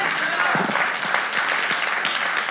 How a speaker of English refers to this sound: Yeah, that's clapping stuff right there.